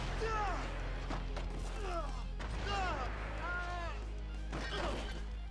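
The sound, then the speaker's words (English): A series of loud, booming blasts hits in quick succession, with sharp bursts and rumbling impacts over a steady low drone. Swooping, whistling tones weave between them. “Boom tower's back, and we keep getting hit with explosions out of nowhere.”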